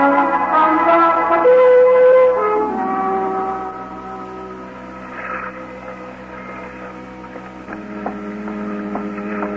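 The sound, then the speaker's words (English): A ship's bell strikes four bells late at night in fog, ringing out with a rich, lingering tone that slowly fades, followed later by a few lighter strikes, all over a steady low hum with no voices. “It's late at the Four Bells.”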